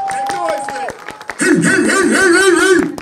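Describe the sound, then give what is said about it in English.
A standing audience claps church-style in a steady, quick rhythm of sharp hand claps that keeps going while a loud voice calls out over them in the second half, urging them to clap faster. “Well, and now let's get the clapping.”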